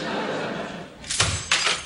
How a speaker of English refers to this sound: Wait, I sense anger in that door slam.